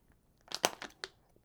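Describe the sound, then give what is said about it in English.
Someone takes a sip of water, with a quick cluster of four or five crinkly, crunchy bursts like a plastic bottle being squeezed. The sounds are fairly quiet, and no one talks. “Taking a sip of water, early one.”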